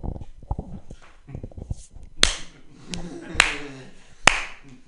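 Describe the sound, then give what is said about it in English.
A few sharp hand claps ring out in the second half, irregular, following a stretch of low, muffled voices and thumps. “I think if you're allowed to clap after your flight successfully lands, you should be able to boo when your flight crashes”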